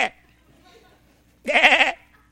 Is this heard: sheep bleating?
yes